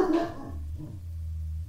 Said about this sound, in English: What are you barking at? Who is it? Who? I don't know who that is. Who is it, Archer? Right. Tell them to go away. Good boy.